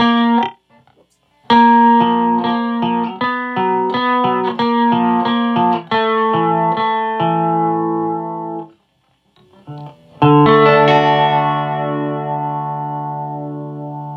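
An electric guitar run through a delay pedal with its delay time turned as fast as it goes to make a chorus effect, playing a sequence of plucked notes and chords with a shimmering, wavering doubled tone, then a ringing chord that sustains and slowly fades.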